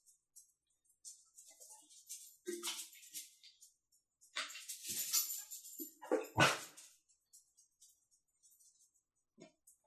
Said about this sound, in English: Sounds like you have a priest flagellating himself in your fucking room. No, just an idiot puppy. Who's more entertaining than the movie?